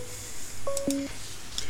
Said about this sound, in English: I think we got a phone call coming in.